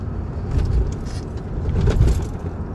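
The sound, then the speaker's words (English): A car rolls along on the way into work with a steady, heavy low rumble, broken by a few uneven jolts and light rattling as it goes over bumps. No one speaks. “So I try to sip my coffee as I endure the usual bumps on the way into work.”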